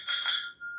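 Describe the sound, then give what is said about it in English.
A single bright clink of glasses touching in a toast, followed by a clear ringing tone that fades away over a moment, fairly loud with no voices over it. “So here's the episode 600, our last show. Thank you, everyone. Cheers.”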